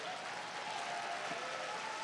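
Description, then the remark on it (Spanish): Steady, thin applause from a small crowd, a continuous soft patter of clapping at a fairly low level with no voices over it. “Ah, no, ese aplauso está muy flojo.”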